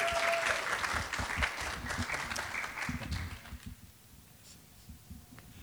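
A room full of people claps steadily, a dense wash of applause that stays strong for a few seconds, then thins out and fades as the clapping dies down.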